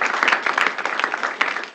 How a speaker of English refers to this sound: Well, round of applause for my family.